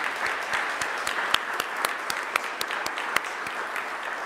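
A crowd applauds steadily, a dense wash of many hands clapping with sharper individual claps popping through, sustained at an even level for several seconds in a large room.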